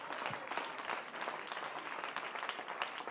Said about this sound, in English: Go clap your hands unto the Lord and give him praise. Come on, give him praise.